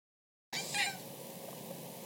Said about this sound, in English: He's doing great. He walked right up to me as I was talking, and he meowed as if to say, Father, I have heard the words.